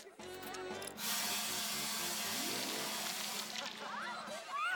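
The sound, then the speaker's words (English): A steady, hissing spray of liquid, sprayed by a character called Skull, runs for about two and a half seconds at moderate loudness, then cuts off, with faint tonal sounds underneath and a brief louder sound at the end. “Come on, Skull, spray something!”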